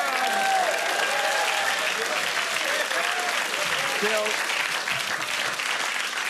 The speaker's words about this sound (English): Bill, that's a, you know, politicians don't always get big applauses. That was pretty good, mate. But yeah, you had a little man telling him to clap, though.